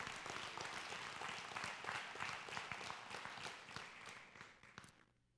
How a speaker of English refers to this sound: Yeah, give him a hand clap.